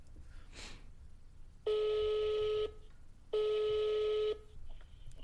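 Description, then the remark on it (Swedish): A phone call to a mother connecting: after a brief click, two steady electronic ringback tones sound, each about a second long with a pause between, clear over faint background hiss. “Jag ringer henne.”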